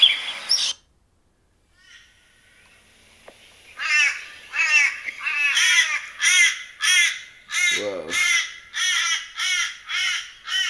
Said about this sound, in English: This one's called American Crow Call. I'm about to play.